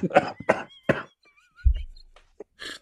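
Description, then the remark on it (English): Three harsh coughs in quick succession, followed by faint whistling tones, a low dull thump and a short rasping burst near the end. “You need to take some ivermectin for that cough, man.”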